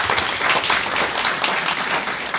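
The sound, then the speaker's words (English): The audience at Grace church claps together in steady, dense applause welcoming visitors, many hands blending into a continuous warm patter that holds at an even level throughout, with no voices standing out. “And all the regulars are going to give you a warm round of applause to make you feel welcome.”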